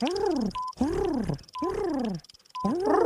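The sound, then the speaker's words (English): A human voice mimics a bird call: four throaty, rising-and-falling hoots in a steady rhythm, each separated by a brief, thin whistle-like tone. “A bird. Okay. A certain type of bird.”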